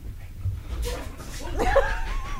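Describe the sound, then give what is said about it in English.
Dogs scuffle, with short rough vocal bursts and a rising whine over a steady low rumble of movement and thumping. “Dogs!”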